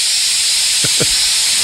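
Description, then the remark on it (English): A spray bottle hisses with a steady, airy mist throughout, broken by two quick, soft pulses near the end. It is fairly loud, with no talking. “Don't spray it in your mouth.”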